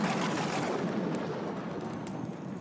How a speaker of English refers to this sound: And here we are with the Gandalf lightning strike.